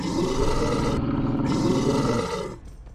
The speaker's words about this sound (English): It looks over you and just does this horrific growl, gurgling sound.